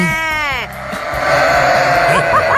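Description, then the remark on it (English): A loud sheep bleat with a wavering, quavering tone opens, followed by a noisy, rumbling background with faint further bleats toward the end. “But now we know that sheep do.”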